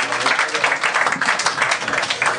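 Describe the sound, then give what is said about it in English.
A live audience claps steadily, a dense, continuous wash of many hands at fairly loud, even volume throughout, with no clear voices rising above it. “Give yourselves a big round of applause.”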